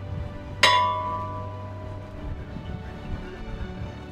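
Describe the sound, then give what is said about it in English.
A single memorial bell toll for John D. Simmons, wheelsman lost in the wreck of the Edmund Fitzgerald, rung at Split Rock, rings out with a sharp metallic strike, its bright overtones fading slowly over a couple of seconds above a low, steady background hum. “Ringing the bell for John D. Simmons, wheelsman, is his great-granddaughter”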